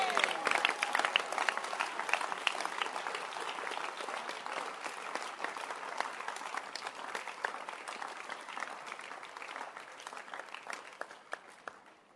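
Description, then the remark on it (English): A crowd applauds with dense, steady hand clapping that starts strong and gradually fades over about twelve seconds, the sharp claps blending into a continuous patter. “Clap your hands for again.”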